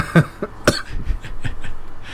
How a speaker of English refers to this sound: You were hitting the bong too hard. I hear that cough.